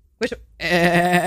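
goat bleating

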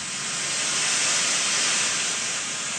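pink noise

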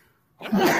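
sneeze

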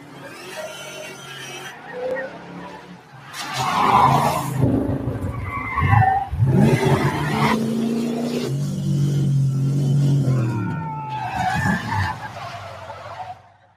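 car driving and skidding

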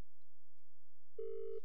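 telephone call ringing unanswered

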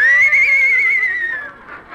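horse whinnying

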